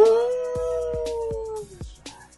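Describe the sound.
A single long, wavering wolf-like howl from a human voice, held for nearly two seconds and slowly falling in pitch, with regular low thuds beating underneath.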